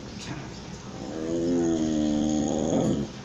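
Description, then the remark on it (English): A dog lets out a long, low, moaning vocalization, drawn out for about two seconds and swelling louder toward the end before cutting off, with no talking over it. “That dog won't kiss and tell.”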